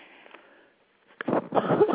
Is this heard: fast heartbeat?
no